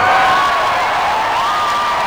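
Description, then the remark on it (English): A large crowd at a draft announcement roars and cheers continuously as a player walks across the stage, a dense wash of loud voices with high shouts and whoops riding on top, sustained without a break. “What's going through your mind as this crowd is just going nuts?”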